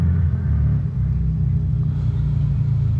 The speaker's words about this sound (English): Do they not make, like, quiet motorcycles? I don't know. No? Most of them are loud as fuck, dude.